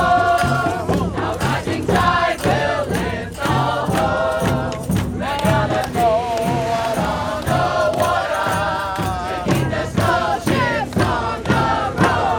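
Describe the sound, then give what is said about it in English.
A large outdoor crowd assembling for the Rising Tide protest at the world's biggest coal port, at the mouth of the Hunter River in Newcastle, while a stage is set up: a steady dense roar of many voices with scattered shouts and cheers rising over it, loud and continuous throughout. “Right, so that's Bob Brown, and this is the crowd assembling around the rising tide here.”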